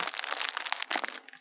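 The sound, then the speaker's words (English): Loud, dense crunching of crisp banana chips being bitten and chewed right against the mic, a rapid burst of crackly snaps that thins out toward the end, with no talking. “Hey, if you want me to make some crunchy sounds, I do have banana chips, and I will legit start crunching into the mic.”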